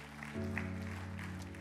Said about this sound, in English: Amen. Give them another great clap for the step they've taken today.